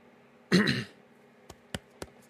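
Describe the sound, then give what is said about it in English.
A single rough throat clearing, followed by three short, sharp clicks or ticks spaced about a quarter second apart. “Got to clear my throat.”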